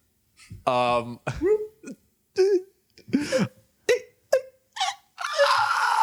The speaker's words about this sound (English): That one was me. That was me screaming, but I didn't have any breath because I was out of breath.